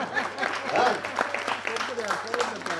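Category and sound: crowd, audience clapping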